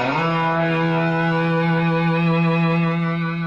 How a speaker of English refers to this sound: And he went away and came back with this phenomenal thing. Distortion pedal, which overloads the signal.